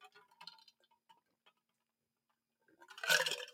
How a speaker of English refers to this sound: Okay, that was less a sip and more of a small gulp, but got to keep myself going.